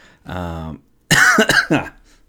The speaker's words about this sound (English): got still a little bit of a cough